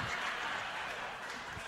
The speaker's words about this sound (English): Don't clap for it. Thank you, though.